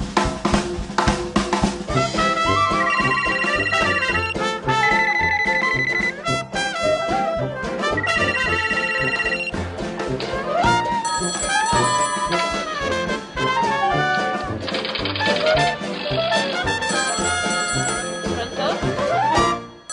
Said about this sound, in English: The sound that the phones here are making, although some of those rings, I think they're obviously dialing in.